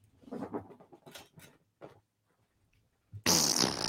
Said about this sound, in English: Oh, he farted.